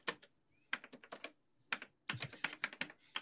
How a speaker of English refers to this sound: I'm not even typing on my keyboard. That's the soundboard.